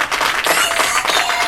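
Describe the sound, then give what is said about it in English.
A short burst of applause for an interview guest, a dense crackle of many hands clapping at once, steady and fairly loud throughout with no voices standing out. “Can I get a round of applause for Bill Dewees?”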